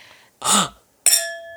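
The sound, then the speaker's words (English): A door chime rings because someone is at the door, two bright notes: a first hazy tone, then a sharper, higher ding whose metallic ring lingers and fades. No one speaks. “That is the chime that rings when the door has a person.”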